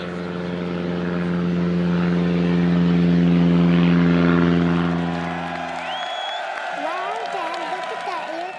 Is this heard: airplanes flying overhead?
yes